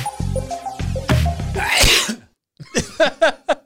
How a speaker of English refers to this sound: Oh, that's beautiful. I absolutely love the sneeze. Had to spice it up a little bit.